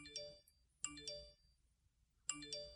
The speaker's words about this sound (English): That's just... That's what my phone sounds like 24/7.